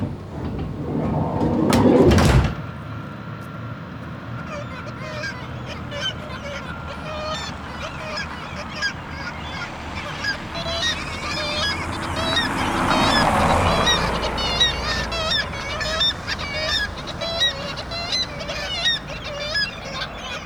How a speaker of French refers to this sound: À 23 heures, les mouettes tridactyles et les goélands cendrés ne dorment toujours pas.